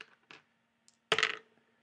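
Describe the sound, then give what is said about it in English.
Dice clatter across a hard tabletop in a D100 roll with special Brock and Roll dice: a couple of light clicks, then a louder, brief rattling tumble that quickly settles. No one speaks. “Roll a D100.”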